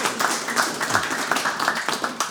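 A crowd breaks into applause, many hands clapping in a dense, irregular patter that stays steady and fairly loud throughout, with no voices over it.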